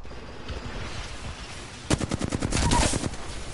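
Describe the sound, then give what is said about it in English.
Video game gunfire erupts after a low rumbling lull: a rapid burst of sharp, loud shots in quick succession, followed by denser, overlapping automatic fire that keeps rattling to the end. “Yeah, I missed all those shots, I'm not gonna lie.”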